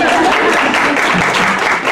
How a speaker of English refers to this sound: Yeah, you guys deserve a little round of applause.